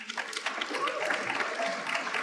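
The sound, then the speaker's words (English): An audience applauds steadily for a regional pastor, the director of a teens ministry, during a thank-you speech, many hands clapping into a dense, crackling wash that holds an even, fairly loud level throughout the short stretch. “Please, let's clap for”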